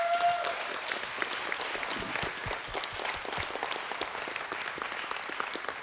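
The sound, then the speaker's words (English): An audience applauds together in a steady, dense burst of clapping that holds at an even level for several seconds, with a brief high tone sounding faintly at the start. “Let's give the Lord a praise.”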